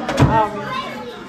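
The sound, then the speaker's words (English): A door shuts with a short, dull thump, closed to keep cold air from coming through, followed by children's voices chattering in the background. “Close that door, because that air is cold coming through there.”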